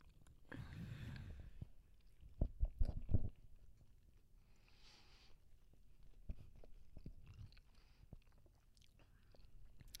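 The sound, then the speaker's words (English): Someone bites into soft food and chews with wet, squishy mouth sounds, a louder burst of chomping early on, then quieter steady chewing. No one speaks. “If I just take a bite, I'm gonna not love it.”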